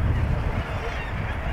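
A dense, continuous chorus of many seabirds, mostly gannets along with kittiwakes, calling at once at a colony of about 18,000 gannets on the cliffs of the Yorkshire coast, honking cries blending into a steady din over low wind rumble, fairly loud and unbroken throughout.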